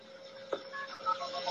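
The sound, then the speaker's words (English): A person whistles a quick string of short, shifting pitched tones, imitating telephone switching signals to place a call through the phone network, over a steady background hum with a soft click partway through. “If you had perfect pitch like blind phone freak Joe and Grecia, you could whistle calls through the network.”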